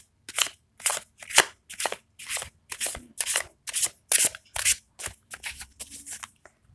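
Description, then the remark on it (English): A Neo Tarot deck being shuffled, with about a dozen quick, crisp bursts of papery riffling in a steady rhythm, each a bright, airy flutter of cards, with no talking. “I'm using the Neo Tarot. It's a beautiful deck.”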